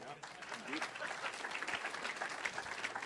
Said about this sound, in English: That's why we do it, the claps.